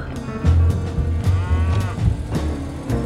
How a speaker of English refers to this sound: I like the cows. Yeah? I like cows, too. Yeah, the cows.